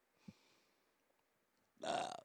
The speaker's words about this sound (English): Oh boy, there's some burp right there with some fucking barbecue sauce in it.